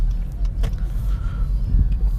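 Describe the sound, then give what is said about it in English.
A brown Lincoln Navigator SUV unlocking to let a person in: one sharp mechanical clunk from the door lock over a steady low rumble of vehicle and outdoor noise, with no one talking. “You gonna let me in? You sure are, you Lincoln Navigator.”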